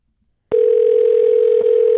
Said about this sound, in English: But they might have turned the ringer off in the library. You know what I mean? It's fucking trying to keep it quiet. So we just gotta let it ring until someone picks up to use the phone and go, oh.